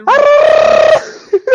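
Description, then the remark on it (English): A loud, sustained celebratory victory screech from a single voice, rising sharply in pitch and then holding a bright, strained tone for about a second, followed by two short vocal bursts. “With the victory screech.”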